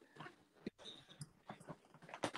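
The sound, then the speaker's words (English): A dog whimpers and whines in a room of a house in short, uneven bursts, a few sharper yelps breaking through, with no one speaking. “We're in the room with one of my dogs.”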